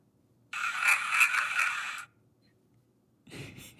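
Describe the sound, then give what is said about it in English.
A sound from a recording said to capture a ghost at a place in Monessen, Pennsylvania: a rough, hissy scraping sound lasting over a second, then after a short pause a duller, lower thump. No one speaks. “I mean, what I hear is a car door closing, so maybe...”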